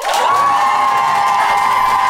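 An audience votes by applause for the team they think made the best case, bursting into loud, sustained cheering and applause, with high whoops and shouts riding over a steady wash of clapping for the full two seconds.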